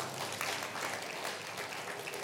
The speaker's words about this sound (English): We can clap for Jesus.